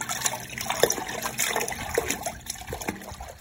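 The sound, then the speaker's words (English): Water splashes and sloshes as a man falls into a hole full of muddy water, with a few sharper plops standing out from a continuous churning, gurgling wash of liquid; no one speaks. “In an instant, he thought he read in the stars that the end of the world was at hand, when all at once, down he went into a hole full of muddy water.”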